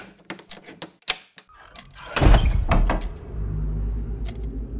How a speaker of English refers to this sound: The door swung back, becoming the yawning mouth of a darkened tunnel.